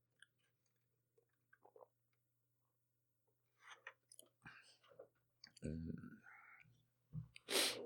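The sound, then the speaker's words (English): Someone takes a sip of a drink, with soft wet slurping, a swallow and small mouth clicks, ending in a breathy exhale. “A little sip after that.”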